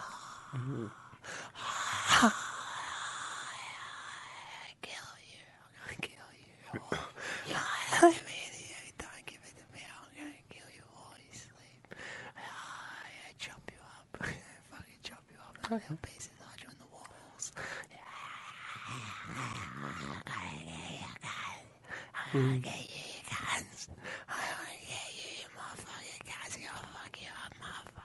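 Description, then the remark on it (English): A voice imitates a Queensland rainforest soundscape with quiet, breathy hisses, whispery rustling, short chirps and clicks, rising and falling in uneven bursts for nearly half a minute with no words. “It was the rainforest, yes. It was the Queensland rainforest.”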